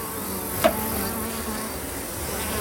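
A steady, dense buzz of many bees kept by a beekeeper hums throughout, continuous, with one brief sharp click or tap near the start and no voices.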